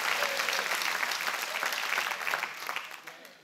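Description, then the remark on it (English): An audience claps their hands in a dense, steady wash of applause that holds strong for a few seconds before starting to thin out, with no voices standing out. “Clap your hands.”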